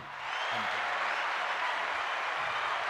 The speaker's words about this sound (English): That's the second consecutive week we've done it on one take, so round of applause for us.